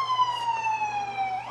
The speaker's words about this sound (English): Oh. Ambulance. Good timing, I guess, for the story. Yeah. It'll make for good audio.